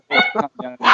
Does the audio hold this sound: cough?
no